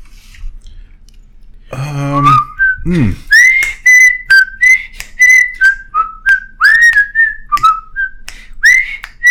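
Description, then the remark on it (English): A person whistles the bouncy, sing-song theme tune of The Andy Griffith Show, clear pure notes rising and falling in quick phrases, opening with a brief rustle and low thump before the tune starts. “I do think I like the simple fishing hole whistling of Andy Griffith better”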